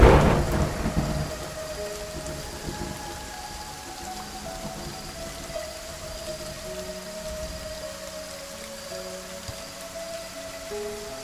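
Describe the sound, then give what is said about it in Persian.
A loud crack of thunder opens, then fades into a long rumble over steady, hissing rainfall that continues throughout, with no voices present. “در دل این ابرهای تیره تو ای آسمان بی ستاره، آیا چنان باران رحمتی هست که این ظرفهای چرب و چیل مرا بشوید؟”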